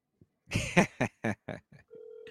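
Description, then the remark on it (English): A phone line ringing without anyone picking up: a series of short, buzzy tone bursts, then a steady electronic ring tone that starts near the end, clear. “he's definitely on the other line. It keeps ringing.”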